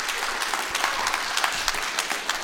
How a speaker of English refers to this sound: Give her a hand clap, everybody.